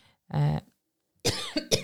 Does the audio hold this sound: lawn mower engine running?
no